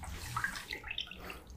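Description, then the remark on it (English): Liquor pours into shot glasses, a short steady trickle with bright, bubbling splashes rising in pitch as the glasses fill. No one speaks. “Take that little put it over here so they can hear it pouring.”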